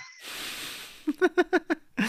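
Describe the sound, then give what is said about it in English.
A long breathy inhale gives way to a wavering voiced exhale broken into about five quick rhythmic pulses, like a drawn-out yawn, with a final breath at the end. “I'm so tired of yawns”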